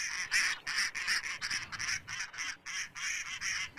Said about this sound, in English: What is that? Look at that. A real duck don't even sound like as good as a duck caller.